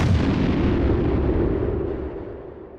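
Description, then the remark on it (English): A deep peal of thunder, a heavy booming rumble strong in the low end that starts loud and slowly fades over about three seconds, with no voices. “A peal of thunder sent shockwaves over the troll village of Sacy.”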